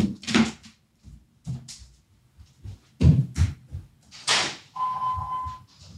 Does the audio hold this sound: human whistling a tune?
no